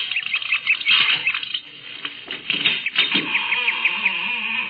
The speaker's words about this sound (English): A creaking door, just the right Victorian touch.